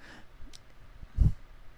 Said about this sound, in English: Are you screaming? Or are you? Oh, you're yawning. I'm yawning.